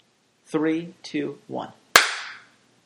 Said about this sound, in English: So when I clap in, you can just start answering that question.